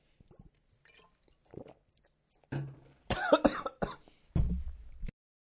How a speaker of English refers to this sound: Water went down the wrong pipe.